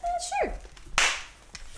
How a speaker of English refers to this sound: You want me to clap again?